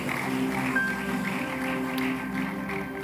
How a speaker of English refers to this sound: And celebrate God with a clap offering.